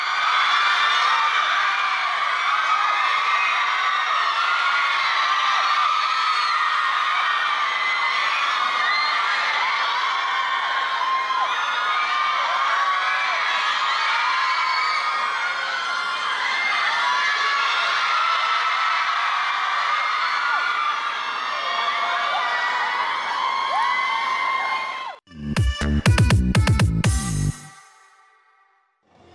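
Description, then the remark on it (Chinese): A dense crowd of fans at a Hong Kong airport screams and shrieks nonstop as Cha Eun-woo arrives and stops to wave to them. It is a loud, high-pitched wall of voices that holds steady for about twenty-five seconds before cutting off into a brief, punchy burst of other sound. “一早带定应援物到场接机，全黑打扮现身的银优睇落心情都不错，还有专登停低同粉丝挥手打招呼，现场粉丝尖叫声不断啊！”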